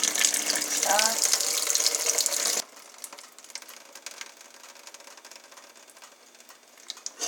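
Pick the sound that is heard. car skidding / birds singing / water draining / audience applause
water draining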